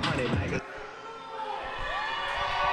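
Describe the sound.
A wrestling crowd cheers and roars in a steady, loud wash of noise for a few seconds, with scattered whoops and shouts rising out of it and a brief voice at the start, as a tag team enters for a Fatal 4-Way match in the George South Tag Team Cup, one wrestler telling everybody to make some noise.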